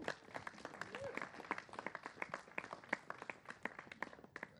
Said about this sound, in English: And yeah, give these guys a hand clap.